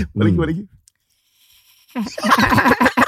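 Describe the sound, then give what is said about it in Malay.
A person imitates a duck's quack with one short, nasal, buzzy honk, then falls silent for about a second before a voice starts talking. “Macam itik main.”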